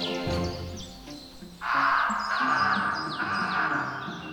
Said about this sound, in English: The crow blinked in confusion. Then it attacked.